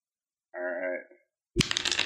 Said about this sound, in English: Okay, roll a d6.